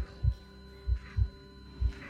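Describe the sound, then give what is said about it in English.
A heavy, pounding heartbeat thumps in low paired beats, lub-dub pulses repeating at a steady quick pace over a faint hum, prominent with no voices. “With his heart pounding, gripping a stolen 8-inch kitchen knife in his sweaty palm”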